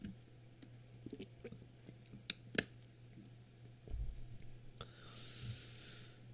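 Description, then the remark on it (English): Mouth sounds of someone sipping water: small wet clicks and lip smacks, a soft swallow near the middle, then a quiet exhale, with no talking. “Behold, let me get a sip of water.”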